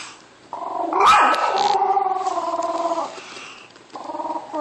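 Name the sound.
dog growling and barking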